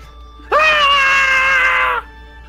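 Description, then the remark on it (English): A single loud, sustained shriek rises sharply and holds steady for about a second and a half before cutting off abruptly, a human voice imitating a shrieker mushroom's scream as light is let in, with no talking. “As the Shrieker Mushroom once again starts yelling out because someone let the light in.”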